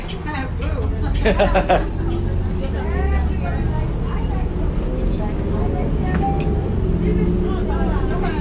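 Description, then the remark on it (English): A city bus at Glendale Station idles with a steady engine rumble while several passengers chatter in the background, their voices overlapping into a busy murmur throughout. “I just arrived, and all of a sudden the bus is here.”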